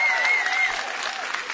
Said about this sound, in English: I didn't even have to tell you to clap, but that wasn't a great clap.